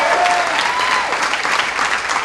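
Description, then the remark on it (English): A crowd of people claps steadily and loudly, a dense wash of overlapping hand claps with no single rhythm, sustained throughout with a brief faint tone early on. “Come on, clap like we believe God is the master of the breakthrough.”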